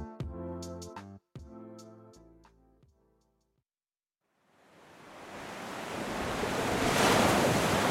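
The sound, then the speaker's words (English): A short musical phrase fades into a moment of silence, then Atlantic Ocean surf at San Luis, Senegal swells up, a broad, steady wash of breaking waves that grows louder and fuller toward the end. “At the edge of the Atlantic Ocean, the city of San Luis, Senegal, is sandwiched between the river and the sea.”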